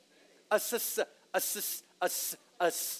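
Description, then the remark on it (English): A person imitates a snake's hiss with four breathy, sharp bursts in a steady rhythm, each with a short voiced onset before trailing into a bright hiss. “A serpent, right? Snakes.”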